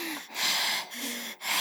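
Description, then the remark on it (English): A person imitates Michael's heavy, menacing breathing outside the house in Halloween: about three slow, raspy inhale-exhale cycles, loud, with no talking. “And then we go outside the shots of the house with what would probably be like Michael out there, and he's just breathing.”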